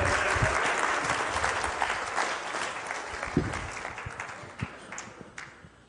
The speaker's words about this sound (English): Everybody clap